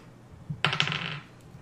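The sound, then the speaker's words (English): A twenty-sided die tumbles across a hard surface: two sharp clicks in quick succession, then a bright, rattling clatter that fades within about half a second. No voices. “D20 again?”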